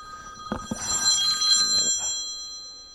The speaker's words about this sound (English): I expect a busy man's phone to ring.